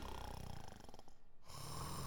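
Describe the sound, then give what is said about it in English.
Several delegates at Liberty Hall, put to sleep by sleeping powder in their lattes, snore together in a loud, rasping chorus, the rough breathing overlapping continuously with a brief quieter dip before swelling again. “I don't know why they're all snoring.”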